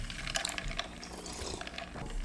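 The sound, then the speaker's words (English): Someone sips an Arnold Palmer iced tea lemonade drink indoors, with a few short, wet slurping and liquid gurgles over about two seconds, moderately loud and with no talking. “Excuse me while I have a little bit of my Arnold Palmer here.”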